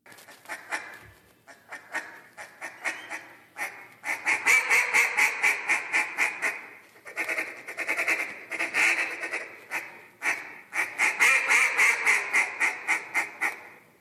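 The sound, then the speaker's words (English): A duck call blown by a multiple-time world champion caller in rapid, rhythmic runs of raspy quacks that swell and fade in several bursts, loud, with no talking over it. “Listen to this guy blow a duck call.”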